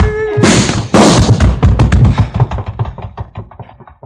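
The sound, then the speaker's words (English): Two loud, sharp gunshot blasts half a second apart, followed by a rapid series of fading cracks and low thuds that trail away, with no voices. “I should have had this gun out sooner.”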